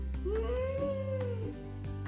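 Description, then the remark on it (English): A child's voice imitates a cat with one drawn-out meow, rising then gently falling, fairly loud over a low steady background hum. “Meow. Oh, it's a cat. Oh, you're a cat. I love it when you're a cat.”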